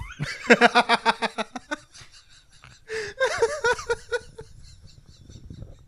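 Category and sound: vocal imitation, person imitating a cat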